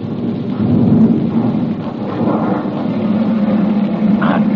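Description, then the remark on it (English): Three ambulances loaded with wounded growl unsteadily forward in a loud, continuous low engine rumble with a rough, noisy texture that swells slightly but never stops. No one speaks. “Three ambulances freighted with wounded growl unsteadily forward.”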